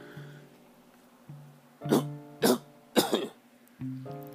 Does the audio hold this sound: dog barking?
no